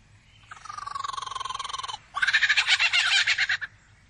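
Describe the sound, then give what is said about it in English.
A male songbird mimics a kookaburra's laughing call: a rapid, rhythmic run of harsh pulsed notes, then a louder, choppier burst of cackling, clear against faint low background noise. “And he does that by copying the songs of all the other birds he hears around him, such as the kookaburra.”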